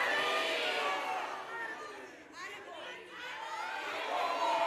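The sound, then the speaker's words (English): An audience screams together on cue after a count of three, at full volume, a dense wall of many high, overlapping voices that dips briefly in the middle before surging back loud for nearly five seconds. “I'm gonna count to three and then you just scream your head off, okay?”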